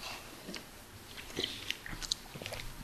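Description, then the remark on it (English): Quiet mouth noises of people sipping and swishing a butterscotch beer, with scattered small wet clicks and slurps over a few seconds and no talking. “So it's that butterscotch, and here let's all take a little bit of sip of this and see what we think about it.”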